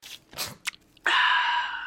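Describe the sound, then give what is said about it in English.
A few quick clicks and rustles of a soda can, followed by a steady, fizzy hiss and slurp of someone sipping a Coke, holding fairly loud to the end with no talking. “Time for me to take a sip of this Coke.”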